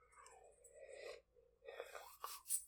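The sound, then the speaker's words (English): A person yawns into the microphone early in the morning, a drawn-out, breathy vocal sound that slides downward in pitch, followed by a brief pause and another airy, sighing exhale. “Oh, I'm sorry. I keep yawning. It's way early here.”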